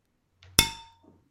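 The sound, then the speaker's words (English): A single sharp, loud clink of glasses of German Pils beer knocking together in a toast, ringing briefly before fading out, with no voices. “I could have broken the glass. That was aggressive on my part.”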